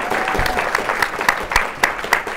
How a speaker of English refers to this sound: I'm clapping us. I don't know why. Good job, us!